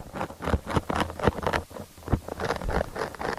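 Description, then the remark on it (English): A caterpillar munching on a leaf, heard as a steady run of crisp, crackly bites and rustling clicks, irregular but continuous, over a soft hissing background with no voices. “And actually, we have that particular sound of a caterpillar munching on a leaf that we can play.”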